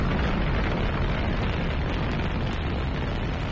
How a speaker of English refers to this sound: Ignition sequence start. 6, 5, 4, 3, 2, 1, 0. All engine running. Liftoff.